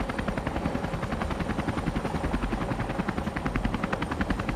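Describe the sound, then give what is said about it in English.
A helicopter gunship roars overhead, its rotor blades thumping in a rapid, steady rhythm over a constant engine drone, loud and unbroken throughout, with no voices. “before I could answer, I saw the reflection of the helicopter gunship in the lieutenant's visor, and then the world exploded into white and thunder.”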